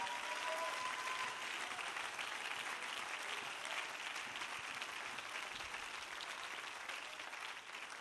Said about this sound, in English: Clap your hands and shout unto the Lord.